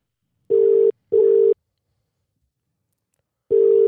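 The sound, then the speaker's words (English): The ringback tone of an outgoing phone call rings out clearly, a steady low double burst followed by a pause and then the start of the next double ring, with no voices present. “we can ring people whenever we want. And you can all hear it.”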